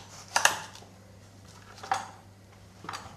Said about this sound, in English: Oh, you've just you're not like even chopping it. You've kind of cut off a hunk just of onion. Just for the flavor, yeah.